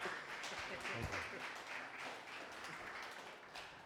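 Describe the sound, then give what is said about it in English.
A crowd applauds with dense, steady clapping for a few seconds, fairly loud, with a few murmured voices mixed in beneath it. “So your brother is, well, go ahead, give him a round of applause.”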